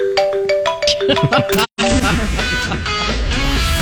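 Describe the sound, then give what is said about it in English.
A phone ringtone plays a quick, bright melody of rising and falling electronic notes for about a second and a half, then cuts out abruptly before a loud, dense wash of noise takes over. “you might want to answer your phone.”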